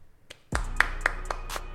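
A short burst of hand clapping, about six or seven sharp claps in a steady, even rhythm, like a small, modest round of applause, over a low background hum.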